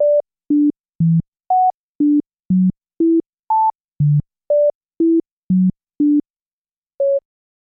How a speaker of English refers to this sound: Diana Deutsch calls this the phenomena of the mysterious melody. A series of notes played an octave apart come across as just beeps, completely indiscernible as a melody.